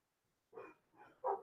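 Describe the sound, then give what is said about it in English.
A dog barks three times in quick succession outside, the final bark the loudest, with no voices present. “Someone's barking at somebody out there.”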